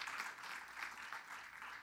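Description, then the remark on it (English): An audience claps hands to give God a praise, a steady, dense wash of applause, bright and crackling, holding at an even, moderate level with no voices standing out. “Somebody clap your hands and give God a praise.”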